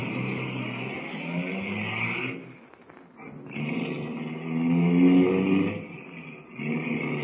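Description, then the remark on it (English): A car engine revs loudly, eases off briefly, then roars up again as the vehicle pulls away, a steady mechanical drone with no talking. “Here's the car. Hop in.”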